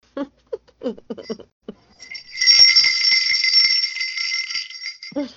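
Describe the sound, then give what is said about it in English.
Small bells ring in a steady, shimmering jingle for about three seconds, bright, following a few brief bursts of speech at the start. “were you ringing bells last night?”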